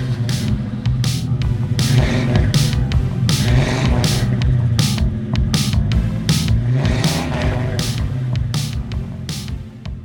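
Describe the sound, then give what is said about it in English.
A muscle car's deep, throaty engine rumbles loudly, revving with a heavy low growl and a rhythmic pulsing throughout, steady and sustained with no one speaking. “and maybe, just maybe, a small rental car splurge too, because I might enjoy just a little more muscle car fun sometime soon.”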